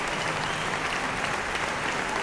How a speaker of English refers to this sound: What are we clapping for here? Everybody's just happy to be here and alive.